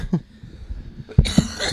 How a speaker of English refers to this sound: I heard that cough. That was not a clear lung.